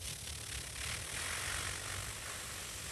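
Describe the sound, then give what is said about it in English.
A voice imitates a bee with a steady, droning buzz that holds at an even loudness for about three seconds, rough and hissy with a low hum underneath. “What a bee sounds like. But it's more of a buzz.”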